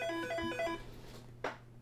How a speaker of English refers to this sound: Sorry, phone's ringing.